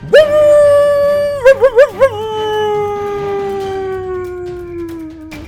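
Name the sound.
wolves howling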